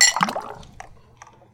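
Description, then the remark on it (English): A bright clink of glasses in a toast rings out at the start, followed by quieter sloshing and gulping liquid sounds as a whiskey is chugged, with a few soft clicks near the end. “Yeah, so and then when it hits, you just chug. All right. Chug the whole thing.”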